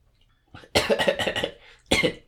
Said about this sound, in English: First, I need to clear my throat a little bit.